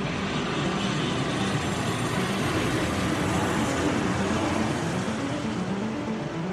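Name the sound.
airplane in flight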